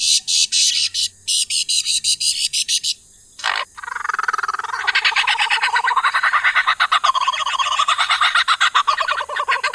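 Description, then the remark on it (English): A pheasant-sized lyrebird pours out a loud run of mimicked calls: rapid clicking trills, a sharp sweeping whistle, then fast pulsing, warbling chatter with no pauses and no voices. “This bird has been known to mimic anything.”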